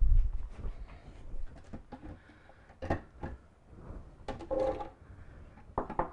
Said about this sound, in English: I'm gonna put my cashews in the blender.